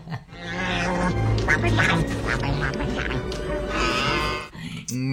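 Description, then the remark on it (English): A Tauntaun creature call: a loud, raspy, honking bellow with a quacking, grunting quality that holds for several seconds, breaks off briefly, then starts again. “The Tauntauns, of course.”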